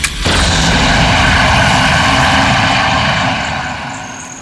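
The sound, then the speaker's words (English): A jet engine roars to life with a sudden burst, then sustains a loud, dense rumbling whoosh before gradually fading as it pulls away. No voices are heard. “Epic Jet! Take us home!”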